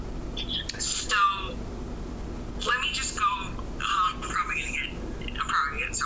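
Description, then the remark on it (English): A caller's voice comes through a phone line muffled and garbled, in several short warbling bursts over a steady low background hiss. “Your audio sounds weird now. What are you? Are you covering your phone?”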